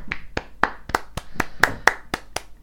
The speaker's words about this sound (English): Hang on, let me clap the NHS.